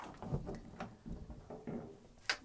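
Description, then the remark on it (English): Footsteps cross a creaky wooden floor, walked over to show the creaking, the boards giving a handful of low, muffled creaks and thumps in an uneven rhythm, ending with one sharper crack; fairly quiet, with no talking. “That's a creaky floor.”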